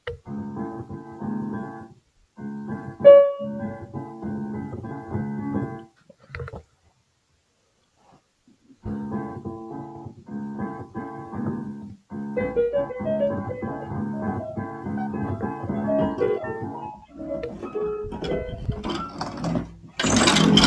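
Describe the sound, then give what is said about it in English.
Loud electronic keyboard tones mashed together in dense, clashing chords, the keyboard turned up to full volume and as many keys as possible hit at once, played in choppy bursts with a brief silent gap, ending in a harsh, noisy flourish. No one speaks. “I just put it up as loud as I can go. I'm gonna hit as many keys as I can.”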